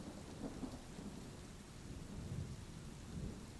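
Steady rain hisses across the whole clip while low thunder rumbles and swells in a few soft rolls underneath, with no voices present.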